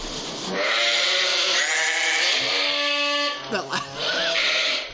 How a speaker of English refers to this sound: A sheep baaing? Yeah! Really?